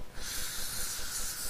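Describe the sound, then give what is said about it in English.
A steady, breathy hiss of a dental air syringe blowing to dry saliva off the teeth before intraoral scanning, continuous through the short clip with a slightly fluttering low rumble beneath it. “So we're going to put a little bit of air to dry those off, because any saliva and bubbles can be captured during the scans.”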